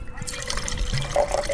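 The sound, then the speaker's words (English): Merlot red wine, a right bank wine, splashes steadily into a glass as it is poured, with a brief gurgle and a faint ringing tone as the glass fills over a couple of seconds. “What are you pouring there? So this is our right bank. It's a Merlot.”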